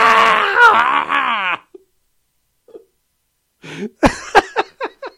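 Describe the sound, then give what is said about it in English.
A woman vocally imitates a horse's scream: a long, strained, wavering shriek, then a pause and a burst of short, choppy whinny-like cries that trail off in stuttering pulses. “she does like a horse scream.”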